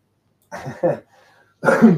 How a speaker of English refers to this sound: Excuse me, coughing again on stream. I've had this awful chest infection for the last, what am I on? I'm on my 4th week of antibiotics and I've got another week left.